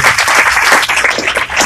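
An audience at a Spanish-language church service claps hands together after a testimony in a dense, steady burst of applause. Many overlapping claps form a loud, continuous crackle with no talking.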